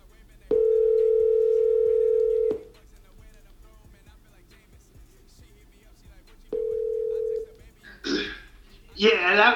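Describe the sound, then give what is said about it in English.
A telephone ringback tone from a call placed for a phone interview with Conor McGregor sounds twice, a long steady electronic purr followed after a pause by a shorter one, then a voice briefly answers on the line. “I mean, fucking, I guess the only way we can find out is to give it a call.”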